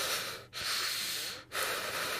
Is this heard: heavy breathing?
yes